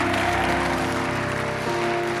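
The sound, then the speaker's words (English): A church audience claps together to praise God during a sermon, a dense, steady wash of many hands that holds loud for the whole stretch, with sustained musical tones humming underneath. “Oh, come on, clap your hands and praise God.”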